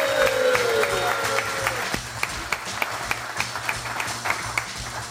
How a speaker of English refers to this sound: Well, let's have another round of applause for all the student athletes here